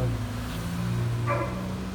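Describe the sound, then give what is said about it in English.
A single short bark from a big Akita dog beyond a fence rises briefly over a steady low rumble like an idling engine; a fainter yelp may come earlier. No one speaks. “Puppies. Look at those Akitas.”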